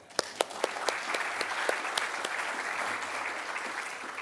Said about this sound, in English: So those are all careers I couldn't have mustered, so we can applaud them too.